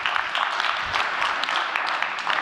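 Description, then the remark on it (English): Steady audience applause during a sermon, a dense continuous patter of many hands clapping at an even loudness throughout, with no voices rising above it. “Listen, I acknowledge that applause.”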